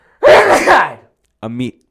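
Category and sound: human body sound, sneeze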